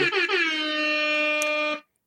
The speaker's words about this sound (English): So hip hop air horns to you.